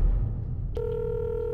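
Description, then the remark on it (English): A telephone ringing tone on the line as a man places a recorded phone call starts abruptly with a click and holds as one steady electronic tone over a low background hum, with no voices. “he makes a phone call, which is recorded by the perverted justice decoy”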